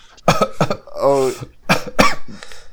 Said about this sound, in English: I can't tell if he's coughing from the corona or from the weed. Okay. I think it's both.